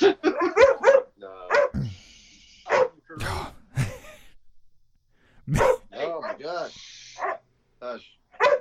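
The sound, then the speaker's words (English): A dog lets out a series of sharp barks and high, whiny yips in uneven bursts, with human voices mixed in between the outbursts. “Maybe it's a Terminator type thing where dogs smell it, so they start barking”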